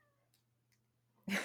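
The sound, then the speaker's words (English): A single loud, sharp meow from a pet cat bursts in abruptly at the very end, following a stretch of near silence with only a faint low hum beneath. “I was going to say, and my cat has started yelling at me again.”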